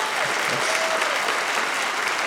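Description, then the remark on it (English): A stand-up comedy audience, those who have kids, claps steadily, a dense, even wash of many hands at a fairly loud level that holds for a couple of seconds without fading. “Round of applause in here if you have kids.”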